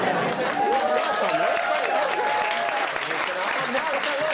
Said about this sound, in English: they took a while to start clapping, by the way. Popular birthday.